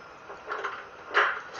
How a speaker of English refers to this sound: That door just opened, like, I'm assuming there's some type of knob or something. I'm not even sure.